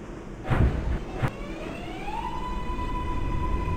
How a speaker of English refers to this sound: What is that? Dude, that chunk that I hear at the beginning? That's when the train, I guess, goes into gear. I've actually heard that in real life, too.